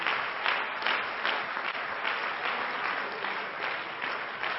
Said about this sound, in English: Why don't you give the Lord a hand clap? Because he is a resurrected Savior.